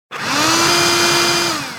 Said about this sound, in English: So, what's that sound? Shout it out. A vacuum cleaner! Not just any vacuum cleaner, a robotic vacuum cleaner.